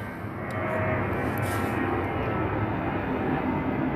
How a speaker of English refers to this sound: These goddamn airplanes get annoying after a while.